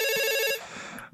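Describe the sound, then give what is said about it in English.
A telephone rings with a bright, buzzing electronic tone for about half a second, then cuts off, leaving a faint fading tail and quiet room noise. “I'm going to answer this. Seth, if you need to remind them of anything else, please do while I'm on the phone.”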